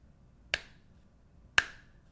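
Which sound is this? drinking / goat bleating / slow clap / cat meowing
slow clap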